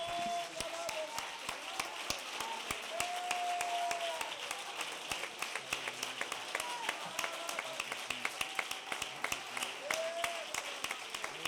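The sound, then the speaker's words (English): A crowd applauds steadily, clapping their hands unto the Lord, many hands in a dense, continuous patter with sharp individual claps standing out, while faint voices call out now and then over the noise. “Why don't we just clap our hands again? Unto the Lord.”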